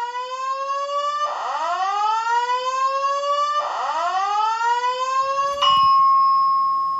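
hotel fire alarm ringing

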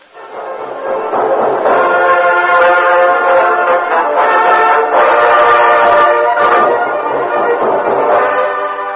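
train

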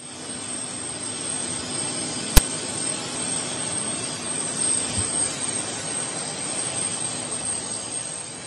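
helicopter engine running

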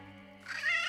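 cat yowling

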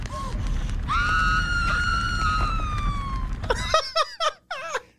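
man screaming

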